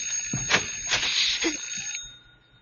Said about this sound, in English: Because the doorbell is ringing. What are you talking about? The bell, it's ringing.